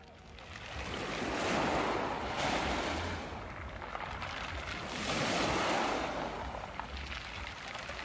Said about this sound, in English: I would head down towards the beach at the bottom of the hill where, due to the tides, the water receding causes the pebbles of the shoreline to play a mystical tune.